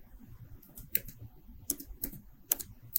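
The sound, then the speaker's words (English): Soft, irregular clicking of keys on a computer keyboard, a burst of quick taps with short pauses between, fairly quiet with no voices. “You're not typing. Oh, oopsie.”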